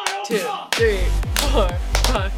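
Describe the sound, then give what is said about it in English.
A run of sharp, crisp hand claps at a steady pace, about two per second, clapped in a row to sync a recording, with voices talking underneath and between them. “Let's do 10 claps in a row, and then we'll get in sync.”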